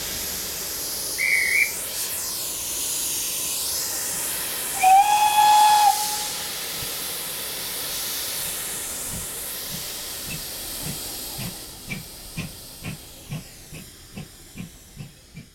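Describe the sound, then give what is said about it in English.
A steam locomotive hisses steadily as two short whistle blasts ring out, then the engine starts chuffing, its puffs growing quicker and more distinct as it pulls away. No one speaks. “I'm now off for a trip on the steam train.”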